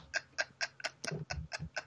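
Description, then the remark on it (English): A grandfather clock ticks steadily, about eight crisp ticks in a quick, even rhythm with slightly heavier, deeper tocks in the middle, and no talking. “It always needs to be a grandfather clock.”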